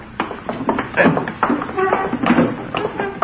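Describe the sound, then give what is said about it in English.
An armchair being shoved back against a wall across the floor of a smaller-scale replica of a living room layout: a run of dull knocks and short scraping drags, irregular and fairly loud, with faint voice-like murmurs mixed in. “Move that armchair back against the wall.”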